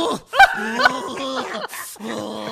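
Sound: person imitating a growl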